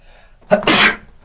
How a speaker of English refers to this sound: Just had to sneeze there. I may or may not edit my sneeze out of the podcast episode